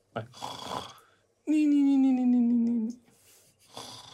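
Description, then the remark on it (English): An old man sitting in an armchair snoring softly and wheezing: a breathy, wheezy inhale, then one long, low droning snore that sags slightly in pitch, followed by the start of another raspy breath. “As you see here, the soft snores and wheezes of your patron sitting in the armchair.”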